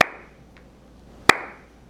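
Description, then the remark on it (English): Two crisp hand claps spaced more than a second apart, with a faint tap between them, a slow, deliberate golf clap with no talking and a short ring after each. “We'll slow golf clap for that.”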